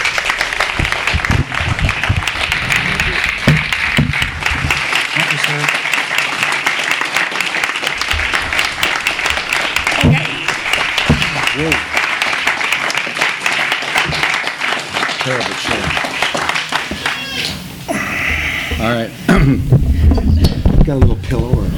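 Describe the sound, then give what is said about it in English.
A crowd applauds steadily, a dense wash of many hands clapping that holds for about twenty seconds, welcoming Ry Cooder and David Ulin on stage, with faint murmurs and shuffling noises near the end as it thins. “So please help me welcome Ry Cooder and David Ulin.”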